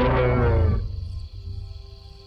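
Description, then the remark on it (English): A single enormous, deep roar from a huge, furry beast that has leapt over a wagon and run off into the forest, loud, bursting out for under a second before fading into a low rumbling tail. No one speaks. “you see a huge, furry, silhouetted figure leap over top of your wagon and run off into the forest, followed by an enormous roar as you lose consciousness.”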